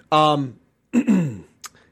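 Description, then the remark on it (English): A person clears their throat in two short voiced bursts, followed by a brief breathy click, with no talking around it. “Pardon me. I gotta hit the cough button.”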